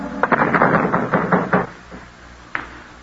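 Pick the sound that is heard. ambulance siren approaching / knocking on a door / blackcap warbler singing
knocking on a door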